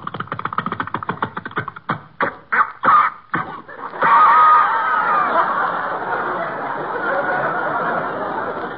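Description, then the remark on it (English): A pull-started power plant engine, started by winding a rope around the flywheel and pulling, coughs and sputters in ragged, uneven bursts for a few seconds, then catches and settles into a loud, steady running roar. “Just wind the rope around the flywheel, uh-huh. And pull.”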